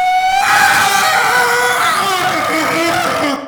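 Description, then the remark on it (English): A voice imitates a train whistle with one loud, sustained, high-pitched wail lasting about three seconds, its shrill tone wavering slightly before cutting off abruptly. No one speaks over it. “And at that exact moment, at that exact moment, there is a train whistle noise.”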